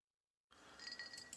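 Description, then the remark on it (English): Ice clinking in a cocktail glass as a man drinks at 8 in the morning: a few soft, bright clinks and rattles after a moment of silence, quiet, with no voices. “Yeah, ice is clinking around in that cocktail glass a little early.”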